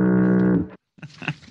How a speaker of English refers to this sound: What was that? Moving on here, Foghorn, the fog of war.